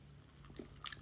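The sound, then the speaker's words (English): A quiet sip of fizzy tonic water: a short wet slurp with a faint crackle of bubbles near the end, over a low steady hum. No one speaks. “Got my tonic water.”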